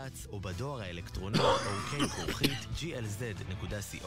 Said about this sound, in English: Still trying to get rid of this cough, thank God. Or whatever it is that I have.